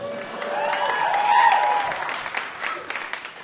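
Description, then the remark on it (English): An audience applauds with a dense, steady patter of clapping, a high whistle or cheer rising above it midway, before the applause thins slightly toward the end. “Pause for applause.”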